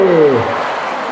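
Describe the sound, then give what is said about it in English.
An audience breaks into a brief, loud burst of applause after the answer to a riddle, starting with a falling groan from the crowd before the clapping settles into a steady patter. “Now, it doesn't deserve a round of applause.”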